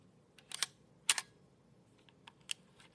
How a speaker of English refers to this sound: Here you hear me advancing the film winder to reset the shutter.